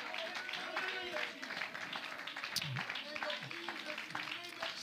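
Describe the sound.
An audience claps hands in praise to Jesus after a prayer, a steady, dense wash of applause mixed with many voices calling out and cheering, loud throughout the few seconds.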